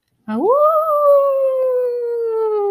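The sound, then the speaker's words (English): A single long dog howl rises sharply in pitch, then holds and slowly sinks, loud, sustained for a couple of seconds with nothing else around it. “So both Nancy and George hide, and suddenly they hear howls.”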